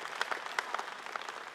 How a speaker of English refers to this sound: Feels like that's a moment where we should clap our hands from Whangarei to Dunedin and give our God some praise.